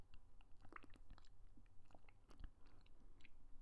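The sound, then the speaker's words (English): Quiet sipping of a drink: a string of small wet mouth clicks and swallowing noises over a few seconds, with no talking. “Hold on, let me take another sip.”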